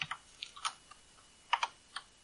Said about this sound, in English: Yeah, and his typing, he's just like, he's like trying to play the piano on a gun. Yeah, he's typing on the piano. Oh, yeah, what the hell is that? It's crazy fast, yeah.